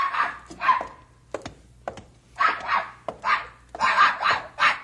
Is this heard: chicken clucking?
no